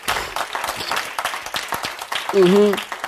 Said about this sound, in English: Only half of y'all clapping.